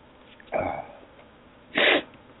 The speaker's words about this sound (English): Excuse my sniffles.